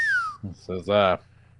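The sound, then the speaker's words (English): A short whistled note glides downward, like the tail end of the whistled theme tune of The Andy Griffith Show, then a voice follows with a few brief vocal sounds over a low background hum. “Gotta get that whistling in.”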